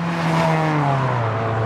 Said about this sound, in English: As we're chatting, the car goes racing by on Pierce Road.